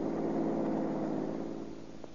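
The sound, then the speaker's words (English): A car engine drones steadily as the vehicle drives along, a continuous low hum at moderate volume that eases off slightly toward the end, with no voices. “Pull in behind this red coupe car.”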